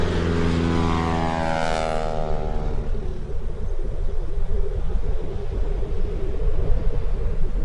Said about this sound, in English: You know, there's this feeling that you get when you're dropped into someplace big, someplace vast and wild, raw. And it hits you first, and it hits you hardest when the sound of that plane just starts to fade. And then it's gone.